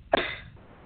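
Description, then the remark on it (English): A single forceful cough bursts out sharply, done as a cleansing breath in a breathing exercise to clear stagnant air and mucus from the lungs, fading into a brief breathy tail, with no talking around it. “And that's going to remove any stagnated air and mucus out of the lung. So here we go. Breathe in. Cough it out.”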